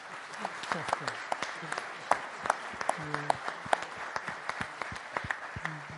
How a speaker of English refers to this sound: How about we give them a round of applause here?